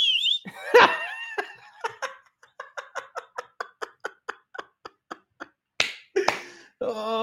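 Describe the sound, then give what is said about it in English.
A voice imitates the wet, squelching splash of walking after using a bidet: about a dozen quick smacking pops in a steady walking rhythm, with laughter before and after. “I was, bro, that shit was just splashing in my pinche fundillo.”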